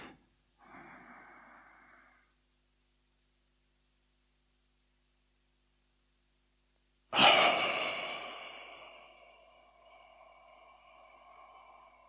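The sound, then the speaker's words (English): During a guided meditation, a person breathes out through the mouth with lips pursed and the tongue resting at the back of the upper teeth: a soft, breathy exhale, then a few seconds of silence and a second, louder, longer exhale that fades slowly. No one speaks. “And when you're breathing out through your mouth, you can purse the tongue a bit, the lips a bit, and the tongue is resting at the back of the upper teeth.”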